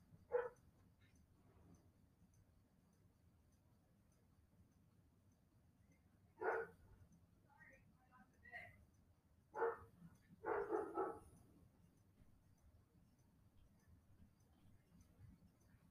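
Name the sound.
dog barking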